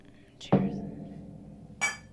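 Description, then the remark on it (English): Drinking glasses clink together in a toast, one sharp ring that fades, followed by a brief bright clatter a moment later, with faint voices murmuring underneath. “Cheers. It's empty.”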